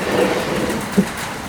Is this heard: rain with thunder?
yes